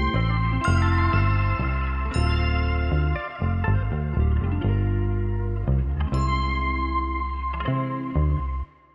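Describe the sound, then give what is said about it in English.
An isolated guitar stem from a sample pack plays a steady sequence of bright, sustained chords and picked notes, washed in echo and chorus-like effects, with no voices and a loud, even level throughout. “Or maybe guitar instead of keys.”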